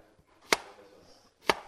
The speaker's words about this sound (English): So we're chopping onions and peppers to garnish our marinated cheese, not cloddany hermeline.